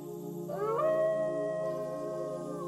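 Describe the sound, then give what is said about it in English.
A fox lets out a long, eerie howl that swoops upward and then holds a wavering, nasal wail, fairly loud, with no other voices and only a low background hum. “The howls of foxes will make your skin crawl and your blood become ice cold.”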